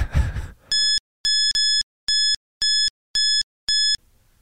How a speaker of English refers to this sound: I'll probably bleep the whole thing out.